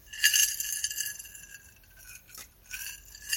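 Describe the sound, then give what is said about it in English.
Johnny Walker Red Label whiskey pours into a glass on a crisp November night in Selma, Alabama, with a bright, trickling splash and a couple of light glassy clinks, fluctuating over a few seconds with no one speaking. “And there's a little bit of whiskey here for this werewolf.”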